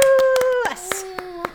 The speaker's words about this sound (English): So should we like give him a round of applause? Let's do that.